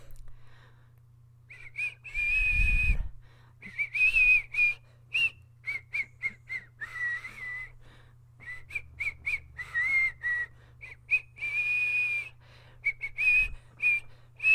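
A person whistles a wandering melody of short and sustained high, airy notes, fairly loud, with a low steady hum underneath and a couple of soft thumps.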